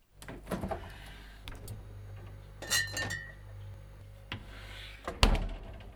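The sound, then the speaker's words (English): A fridge door opens with a low hum running underneath as someone goes to get a second beer, followed by a few bright clinks of glass bottles knocking together, fairly quiet, ending in one sharper clink. “Let's go see what's in the fridge.”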